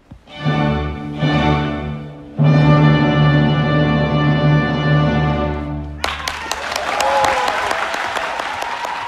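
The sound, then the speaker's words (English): A loud, sustained orchestral chord holds for several seconds, then a concert audience in the Dubai Opera Auditorium breaks into dense, steady applause, hundreds of hands clapping together at full volume until the end. “Nothing is compromised, certainly not the intensity of the performance, which was met on the night with exuberant, sunny applause in the Dubai Opera Auditorium.”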